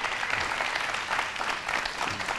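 An audience applauds steadily, a dense patter of many hands clapping at once, sustained and fairly loud throughout with no one speaking.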